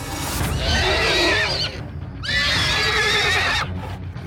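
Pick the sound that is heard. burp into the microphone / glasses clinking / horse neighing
horse neighing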